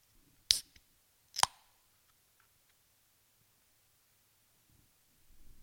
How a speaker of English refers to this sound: Oh, that's a beautiful sound, isn't it? Gotta love just cracking a beer and late in an evening, watching the cricket and getting ready to chat some Port footy.